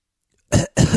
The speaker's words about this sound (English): Real thick cough.